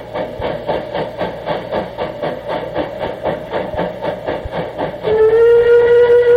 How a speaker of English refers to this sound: fine proportioned example of the acorn design whistle